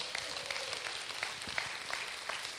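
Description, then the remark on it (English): A crowd of people clapping together as praise to God one morning, in a dense, continuous patter of many overlapping hand claps, held at a fairly soft, even level throughout with no voices. “And if you believe that, give God a clap of praise in this place this morning.”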